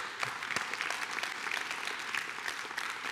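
Thin, scattered applause from an audience: a few people clapping unevenly in a steady patter that never builds, fairly quiet and sparse, with no voices over it.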